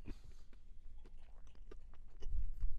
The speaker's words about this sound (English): This is, what kind of bread is this? It's a brioche. It's a really mumfy brioche served with this exciting chicken liver mousse. Listen to the chew. Oh, that's delicious.